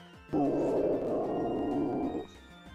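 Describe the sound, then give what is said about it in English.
A deep, guttural monster roar of pain bellows out once, loud, holding steady for about two seconds before cutting off, with no talking around it. “You hear these roars of pain, these guttural roars that just shake the arena.”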